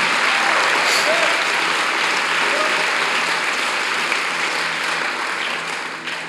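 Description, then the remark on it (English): An audience claps their hands together for God in the morning, a dense, sustained burst of applause that stays loud throughout, thinning slightly toward the end, with faint voices mixed in. “If you're going to clap, come on, give God a good hand clap this morning. Give God your best hand clap real quick.”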